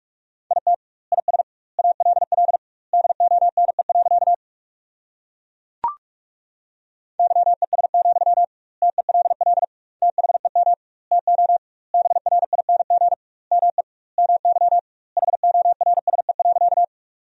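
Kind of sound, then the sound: signal or alarm, morse code practice tones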